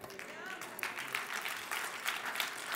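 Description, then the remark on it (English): An audience claps during a sermon in a steady, dense patter of many hands, with bursts of louder clapping rising and falling throughout, mixed with faint voices underneath. “Y'all clapping, but I'm still carrying baggage.”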